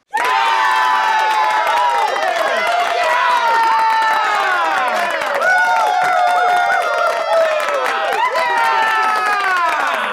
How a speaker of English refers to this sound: You are correct. If you could not tell from that eruption of applause, you are certainly correct.